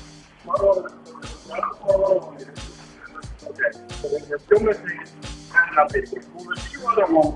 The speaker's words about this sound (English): That's a butt dial.